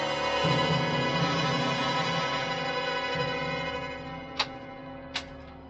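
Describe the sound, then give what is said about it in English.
A steady, droning hum fills the background, then near the end two crisp, sharp clock ticks sound about a second apart as a stopped clock starts again and its second hand moves. “It started again, see? What? The second hand's moving.”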